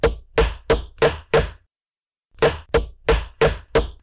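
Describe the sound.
Sharp, knocking taps in two quick bursts, five then six evenly spaced strikes with a short pause between, imitating a woodpecker pecking. No one speaks.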